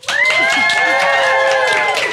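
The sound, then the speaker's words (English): A live-show audience bursts into loud applause and cheering as a guest comes on, with sustained whoops riding over steady clapping for about two seconds. No one speaks over it. “I feel so special because people who aren't at the live show, they don't get claps when they come on the show.”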